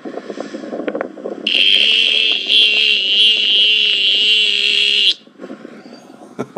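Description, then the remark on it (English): A loud, steady, high-pitched droning whine from a chorus of mating cicadas on a sunny afternoon rises abruptly, holds for about four seconds, then cuts off, leaving quieter outdoor background noise before and after. “I just wanted to, you know, let you guys share my little afternoon walk, sitting under a tree in the sunshine, right in the middle of cicada sex.”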